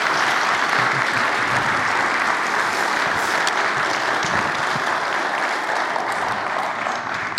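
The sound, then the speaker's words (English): An audience claps steadily for several seconds in one last round of applause, a dense, continuous wash of applause that stays loud and even from start to finish with no talking over it. “But can we give one last round of applause?”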